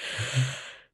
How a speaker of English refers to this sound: And now that's made everyone at home yawn.